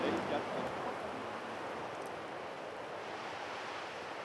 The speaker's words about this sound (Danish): En høj palme duer i en brise i de højere luftlag. Dens langsomme bevægelser blander sig med havets dovne dønninger.